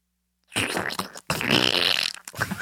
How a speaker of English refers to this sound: If you throw a bunch of pebbles, like a handful of pebbles, into a shallow lake, it sounds like diarrhea. That is true.